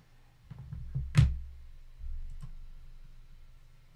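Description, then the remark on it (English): A few light, irregular key taps, followed by a single heavier thump and one more click after a pause, like slow hunt-and-peck typing on a very small, not regular-size keyboard, with no talking. “It's funny I have to look when I'm typing. Well, it's a very small keyboard.”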